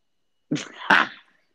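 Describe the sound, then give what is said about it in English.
A female dog barks in a short, sharp double burst, the second yelp louder and drawn out slightly longer, with silence before and after and no one speaking. “Oh, that's her. Shut the hell up.”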